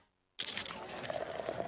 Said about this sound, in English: Do you hear that Coors Light being poured? It's the perfect temperature. How can I tell just based on the sound? I can't.